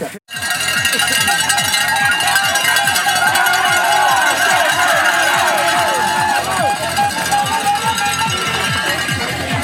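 Many cowbells clang loudly and continuously at the UK National Hill Climb Championships cycling race, in a fast, uneven rhythm, their bright metallic ringing overlapping with a steady murmur of crowd voices throughout.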